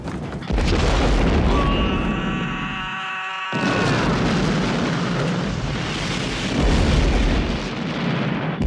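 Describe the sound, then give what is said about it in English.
Loud, rolling explosions boom one after another in a dense, continuous roar, briefly joined by a high whistling tone before another heavy blast surges in and keeps rumbling. “Explosions.”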